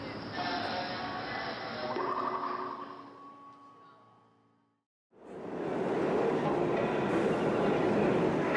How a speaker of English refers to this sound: Of course, now all the trains are coming. Yeah. What? Is each one individual? This is like rush hour.